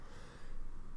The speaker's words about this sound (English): Fucking coughs, huh?